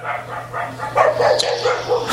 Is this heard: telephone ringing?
no